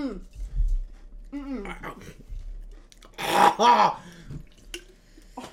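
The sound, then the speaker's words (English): A loud, rumbling belch erupts after some voices and exclamations, a throaty burst lasting under a second before quieter murmuring returns. “The burp is worse, you guys.”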